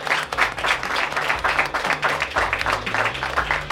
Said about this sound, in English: And a special thanks to our audiences, both in Kabul and in Washington. Please give yourselves a round of applause at both ends.